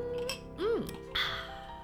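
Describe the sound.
Voices speak briefly, then a single bright, ringing clink of glasses of vodka touching in a toast cuts in, its high tone lingering for a moment under the talk.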